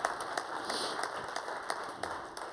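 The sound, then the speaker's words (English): A small group claps for a couple of seconds to welcome women coming up to the front, a steady patter of overlapping hand claps with a few sharper individual claps standing out, fairly quiet. “Just give them a little bit of a clap there.”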